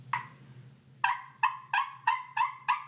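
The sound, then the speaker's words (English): An old, bent wooden striker scratched across a Tramp Stamp glass turkey call makes squeaky, high-pitched yelps: one lone note, a pause, then six evenly spaced clucks in a steady rhythm, with a low hum underneath. “Okay, so this is the wood one on the Tramp Stamp Glass call.”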